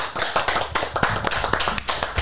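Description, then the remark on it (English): A group of people clapping together in steady applause, dense overlapping claps filling the whole stretch at a fairly even loudness, with no talking. “It's the first time the clap thing worked.”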